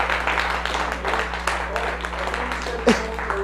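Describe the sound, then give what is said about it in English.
An audience applauds a woman being honored as a mentor, a steady, dense wash of many hands clapping at moderate volume, with a brief vocal whoop rising out of the noise near the end over a low background hum. “Give her a lot of round of applause than that.”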